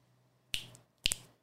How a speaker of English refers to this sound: Snap their fingers. There you go. They can't do that.